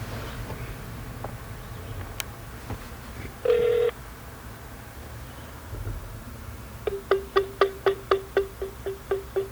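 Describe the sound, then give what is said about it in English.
A phone call placed through Google Voice rings through: one short steady tone, then a quick, evenly spaced run of about a dozen brief electronic beeps over faint line hiss, with no one talking. “It's ringing.”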